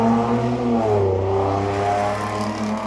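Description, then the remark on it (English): A loud car engine with dual exhaust revs and rumbles, its pitch rising and dipping in a steady roar for a few seconds with no one speaking. “You know, I live in a redneck nation and everybody believe in dual exhaust.”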